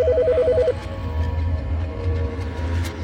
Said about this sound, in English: Just then the phone rang. It startled me so bad I stumbled over the chair.